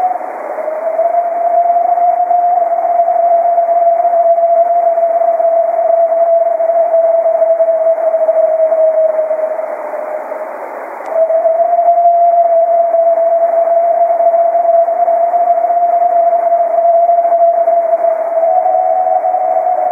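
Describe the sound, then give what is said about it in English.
A purported sasquatch vocalization recorded by Todd Hale: a long, steady, moderately pitched howling call held for about ten seconds, a brief dip, then a second equally long sustained call, loud and alone with no talking. “Those are the kind where they're really showing off their lung capacity, and you can rule out coyote because they go so long.”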